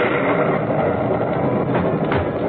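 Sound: clap of thunder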